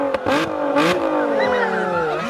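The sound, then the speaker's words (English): A car engine revs loudly, its pitch sliding with each throttle push while a steady mechanical hum holds underneath. “The car is revving.”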